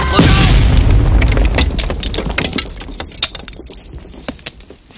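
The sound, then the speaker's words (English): An explosion blows up a Combat Carl toy action figure in the film scene where Sid is first introduced. A loud boom bursts at the start with a deep rumbling low end, then scattered crackles and small pops of debris patter down as the blast fades over several seconds. “He's just blown up a Combat Carl.”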